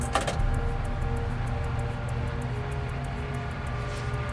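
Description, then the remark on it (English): A freight train, number 413, made up mostly of grain cars, roars west along the track, a steady heavy engine rumble with a rapid, regular clicking of wheels over the rails running throughout. No one speaks. “As 413 roars west, a Via passenger train speeds east on the same track.”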